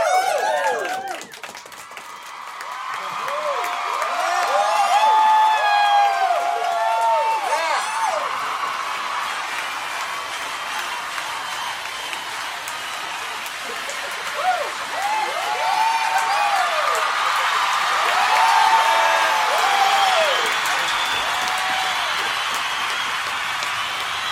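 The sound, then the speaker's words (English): Canned applause from a soundboard, played to introduce the live show Leighton Night with Brian Wecht, a steady dense wash of clapping mixed with whoops and cheers that rise and fall, holding fairly loud for about twenty-four seconds. “The 30-second applause smile.”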